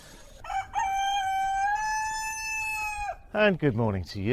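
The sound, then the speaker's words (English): A rooster crows loudly and close by in Cabo Verde, one long sustained call lasting nearly three seconds, followed by a person speaking briefly. “When I was a kid, I always associated the call of a cockerel with dawn.”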